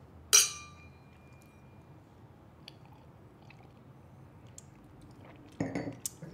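Glasses clink together in a toast to the Dominican Order and the Feast of St. Dominic, one bright, ringing chime that fades slowly, followed near the end by a short cluster of clattering knocks and clinks.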